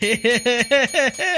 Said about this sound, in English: I have to ring the bell because no one else is laughing. Not even the audience, not even the listener.